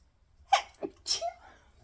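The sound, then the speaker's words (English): A single sharp sneeze, caused by Columbia wool, bursts out with a breathy lead-in and a brief trailing exhale, standing alone against a quiet background. “I'm gonna sneeze.”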